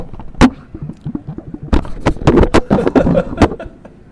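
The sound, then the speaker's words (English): Crowd ambience from crowds walking by at the Sheep Show in Reno: a steady low murmur of indistinct voices and shuffling, broken by sharp clacks and bumps at irregular moments, with a brief laugh-like sound early on. “If you hear a little bit of ambient noise, it's crowds walking by.”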